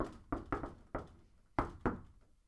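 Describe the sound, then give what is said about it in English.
Five loud, heavy knocks on a closet door standing in for a front door, a group of three followed by a quicker pair, each thud leaving a short resonant ring before the next. “A sudden loud knock on the front door.”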